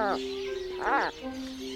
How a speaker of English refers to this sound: Let's listen. This is an Atlantic puffin.